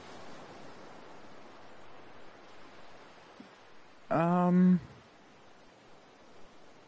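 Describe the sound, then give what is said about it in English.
A steady, rushing wash of ocean surf fills the whole recording at a moderate level, briefly interrupted near the end by a short burst of a voice. “I mean, if this is as much water as I think it is, I feel like I would really enjoy the breeze right now.”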